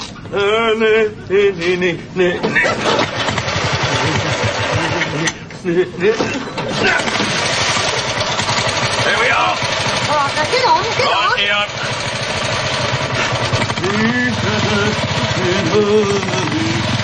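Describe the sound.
A car engine cranks and catches, then settles into a steady, rumbling idle, while voices talk over the mechanical noise.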